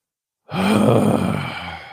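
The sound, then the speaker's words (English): A person imitates a loud, impatient heavy exhale, a long breathy sigh lasting about a second and a half, starting abruptly after brief silence. “You breathe really loud like that.”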